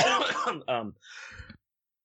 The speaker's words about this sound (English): Do we need to cut this out? What? No. No, I was just coughing.